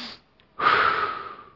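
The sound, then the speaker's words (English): A quick demonstrative sniff in through the nose, a brief pause, then a longer, breathy exhale that fades out, with no talking. “But, you know, my mom said to me, learn to breathe in a compliment and then breathe it out. Just sniff at a compliment.”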